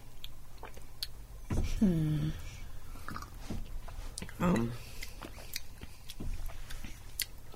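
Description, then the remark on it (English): Wet slurping and chewing with scattered clicks and smacks, broken by a couple of short voiced murmurs, as someone slurps orange juice to taste it. “I'll let you have a bit of a slurp down on it and then make your predictions.”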